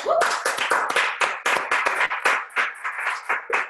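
A small group claps steadily, dense overlapping hand claps forming a lively, slightly uneven burst of applause that holds at a fairly loud level for a few seconds.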